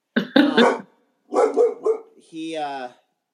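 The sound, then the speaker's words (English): A dog barks in a quick burst of sharp barks, pauses, barks again, then lets out a longer drawn-out whining yelp. “I have a dog too. He's just not down here. I don't even know what he's not even at the window.”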